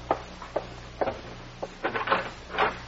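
A front door is opened as it is answered: a string of sharp clicks and light wooden knocks from the latch and handle, followed by a brief scraping rustle, with no voices.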